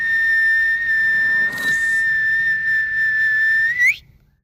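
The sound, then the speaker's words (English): A single long, shrill whistle blast, called the Kyle whistle, a call for Kyles to gather in Kyle, Texas, holds one steady high pitch for nearly four seconds, loud, with a brief breathy burst partway through before it rises sharply and cuts off. “Put out the Kyle whistle.”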